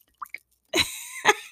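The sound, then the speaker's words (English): Chai tea sloshes around in a cup: two small drip-like plinks, then a louder splashy swirl with a brief gurgling tone, followed by another short slosh. No voices. “So until then, I got my chai tea. Y'all hear it?”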